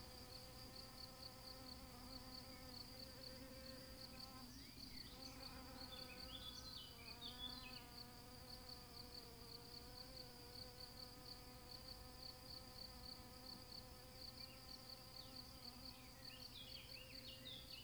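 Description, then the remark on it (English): A steady, droning hum of many bees buzzing continuously around massive crimson rose blooms on roses almost 12 feet high, with a few brief high chirps layered on top and no voices present. “The roses are of epic proportion, the loveliest of which grow almost 12 feet high, with massive crimson blooms covered with clouds of butterflies and buzzing bees.”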